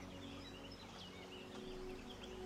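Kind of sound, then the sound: bird, birds singing in woodland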